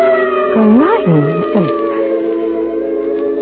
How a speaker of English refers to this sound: Look, George, it's an ambulance.